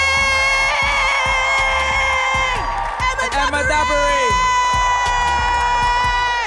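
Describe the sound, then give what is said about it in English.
An audience cheers and shouts loudly in applause for the show's guests over music with a steady thumping beat and sustained tones. The crowd noise runs continuously for several seconds. “Could you guys give a round of applause to our guests?”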